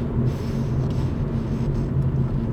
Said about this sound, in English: So, currently driving in the car, I was debating whether or not to do this podcast right now or wait till I got home, but there's a good amount of traffic right now